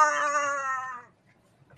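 A rubber chicken lets out one long, nasal squawk lasting about a second, buzzy and rich in overtones, before cutting off into near silence with a faint click at the end.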